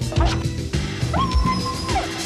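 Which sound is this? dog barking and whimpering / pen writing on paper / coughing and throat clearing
dog barking and whimpering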